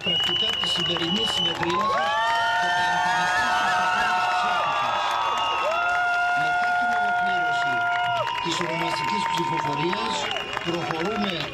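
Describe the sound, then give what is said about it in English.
A large outdoor crowd in the streets of central Athens, Greece, cheers and shouts continuously as the passing of same-sex marriage legislation is announced, with sustained whistles or horn-like tones rising above the dense, loud mass of voices throughout. “People cheering there in the streets of Athens as the news was shared.”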